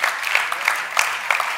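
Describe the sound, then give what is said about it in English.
Light, scattered applause from a modest audience, a steady patter of claps at moderate volume with no voices standing out. “Notice the clapping's lighter.”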